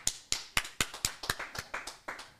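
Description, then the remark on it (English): A short burst of applause from a studio audience, about ten crisp, separate claps in a quick, steady rhythm. The claps sound clear, with no voices. “I was looking forward to the round of applause from the studio audience here.”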